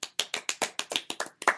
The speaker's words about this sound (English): We always have to clap whenever someone's not dead.